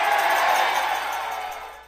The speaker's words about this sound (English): You can hear the crowd. I mean, that was a big crowd. Yeah, you can hear that. Yeah, huge crowd.